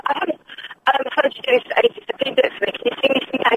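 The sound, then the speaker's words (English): A voice comes through a poor telephone line, thin and muffled with the highs and lows cut away, talking almost continuously with a few brief pauses. “Yes, your phone is rubbish, but I'm going to stick with you because I like you.”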